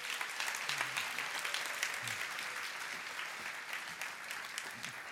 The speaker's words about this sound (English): They've been great, haven't they? Give them a clap.